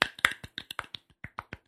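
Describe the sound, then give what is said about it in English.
A soft golf clap: about a dozen light, crisp hand claps at a steady, unhurried pace, a little uneven and spacing out toward the end, with no voices. “I'll do it with you. Golf clap.”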